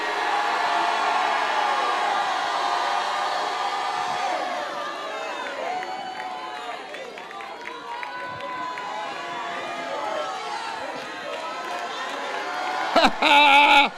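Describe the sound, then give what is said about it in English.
A large crowd shouts and cheers continuously, a loud dense roar of many voices with rising whoops and yells, swelling into a burst of louder cries at the end. “He's giving you your own chance to shout.”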